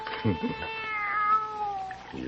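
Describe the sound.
A young kitten gives a long, drawn-out meow that rises and then trails off, clear, with a short burst of low voice just before it.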